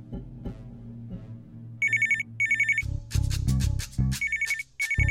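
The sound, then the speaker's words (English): A telephone rings with short, bright electronic trilling bursts that repeat in pairs, joined midway by punchy dramatic music hits over a low background hum. “If you want to hear what happens when Mariela answers the phone, listen to episode 33, Lack of Legroom.”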